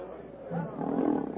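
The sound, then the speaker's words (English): A black panther snarls savagely in a low, rough growl that swells and grows louder toward the end, menacing, with no speech over it. “Snarling savagely, Sheeta sinks slowly to the ground, gathering himself for the charge.”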